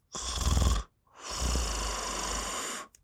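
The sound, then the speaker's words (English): A person deliberately snores through one short, rattling inhale without moving the jaw, then after a brief pause takes a longer, smoother breath with the jaw pushed forward to open the airway, with much less vibration. Both breaths are fairly loud, with no talking. “So the first breath in is going to be without moving my jaw. The second breath is going to be with my jaw forward.”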